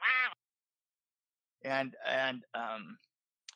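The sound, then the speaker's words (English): A voice imitates geese honking right outside a window: one short nasal honk, a pause, then three loud, drawn-out honks in quick succession, clear with no other talk. “We were filming down in the house down the hill, and there was this geese were like right outside of the window, and they kept wah, wah, wah.”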